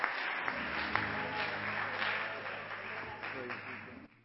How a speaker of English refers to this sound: Let's clap our hands, shouting to God with the voice of triumph